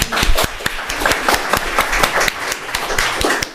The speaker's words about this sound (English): I think we need to clap for her again.